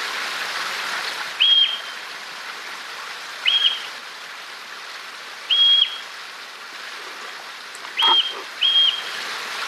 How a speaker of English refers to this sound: So you just heard the sound of a marmot call.